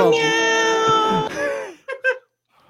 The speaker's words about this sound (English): Oh, poor cat.